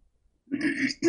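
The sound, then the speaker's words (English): A single short throat clearing, a gruff half-second rasp that follows a moment of silence, with another vocal sound starting just as it ends. “I had to clear my throat.”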